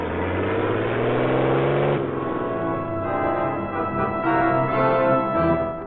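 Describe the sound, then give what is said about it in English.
A heavy armored truck's engine revs and rumbles as it pulls away from the rear door of a large bank in Miami, a loud, steady drone with rising pitch at first, continuous, with no voices. “an armored truck drove away from the rear door of a large bank in Miami.”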